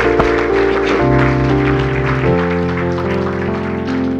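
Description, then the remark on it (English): An audience claps steadily throughout for the parents who worked on the props and decorations, a dense rattle of many hands over loud, sustained keyboard or organ chords that shift in pitch partway through. “Would you give them a hand, all the moms, all the parents?”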